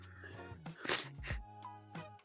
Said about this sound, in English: Sorry, I'm sneezing everywhere.